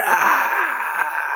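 A voice lets out a strained, breathy scream-like wail in imitation of a Wilhelm scream, one sustained cry that stays fairly loud for over a second with no talking.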